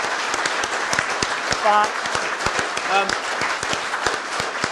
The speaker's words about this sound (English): I think a round of applause for...